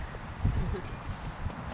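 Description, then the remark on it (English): A horse's hooves clip-clop in a few uneven, low thuds, moderately loud against a quiet outdoor background, with no one talking. “talking about Warm Springs horses and how to approach them.”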